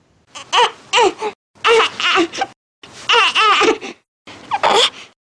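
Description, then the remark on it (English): A baby's "eh" cry, the kind signalling a need to burp, made by tightening the stomach muscles to bring up wind: four loud, strained, high-pitched bursts separated by short pauses, with no other voices. “So the next one would be eh, which is indicating that they need to burp.”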